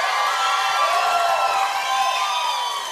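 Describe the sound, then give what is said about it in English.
A crowd yells and cheers loudly and continuously, a dense wash of many overlapping voices with high whoops and shouts rising above the roar for the full three seconds. “I know if you guys were at a concert or a sporting event, you can yell louder than that.”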